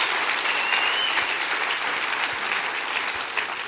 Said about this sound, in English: Come on, somebody clap your hands and rejoice in that. It's time.